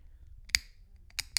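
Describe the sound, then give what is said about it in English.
An Alani energy drink can being cracked open: a sharp metallic pop with a short bright ring, then two quicker clicks a moment later, over a low steady hum with no talking. “excuse me while I need to open up this Alani real quick.”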